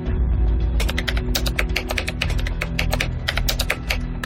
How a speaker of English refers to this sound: That's Donahue typing his new password, twice, and the keylogger picks it up.